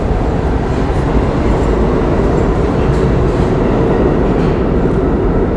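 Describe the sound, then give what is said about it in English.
A train at a platform rumbles steadily during boarding, a loud, continuous low roar with faint metallic hiss above it and no pauses, with no voices over it. “That was the least I've ever thought, like, not getting on a train.”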